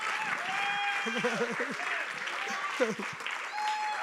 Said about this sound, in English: You must be clapping for yourself. Yeah, you must clap for yourself. Not just for me, for you.